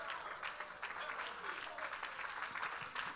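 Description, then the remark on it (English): An audience, standing to their feet, claps steadily to give the Lord a hand clap of praise, a dense crowd of hand claps at moderate loudness, with some faint voices mixed in underneath. “Oh, go ahead and stand to your feet and give the Lord a hand clap of praise.”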